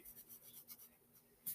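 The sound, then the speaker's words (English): Soft, repeated scratchy strokes of a pencil coloring in a drawing of a cat's body on paper, a quick rhythmic back-and-forth rasp that stays quiet, ending with a slightly louder scrape. “When there's a black or gray cat, I always color it in with pencil.”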